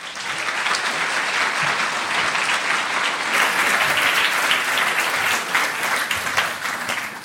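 Steady, sustained applause from an audience welcoming the director of the peace research institute PRIO as he is introduced to speak, a dense wash of many hands clapping at an even loudness for about seven seconds with no speech over it.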